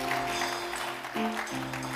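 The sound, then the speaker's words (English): An audience claps steadily as a clap offering to celebrate God, in a dense, continuous wash of applause, with sustained organ or keyboard chords playing underneath and shifting pitch briefly midway. “Celebrate God with a good clap offering.”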